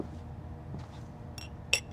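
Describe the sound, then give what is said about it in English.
A quiet kitchen with a low hum, then two sharp glassy clinks near the end, like a glass being grabbed, rinsed and handled before scotch is poured into it. “I went to the kitchen, grabbed a glass, rinsed it, and poured me some scotch.”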